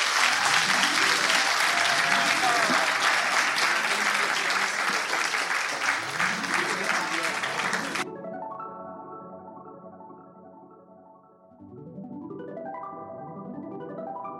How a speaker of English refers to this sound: So could I get a round of applause